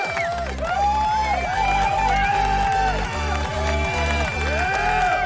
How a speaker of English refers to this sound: And the applause button. Oh, yeah, and the applause button. Applause button. There you go.